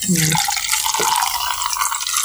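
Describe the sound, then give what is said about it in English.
Hard seltzer pours steadily into a glass, a continuous hissing splash with the pitch of the filling rising slightly, a brief voiced murmur at the very start. “All right, let's pour a little bit of this.”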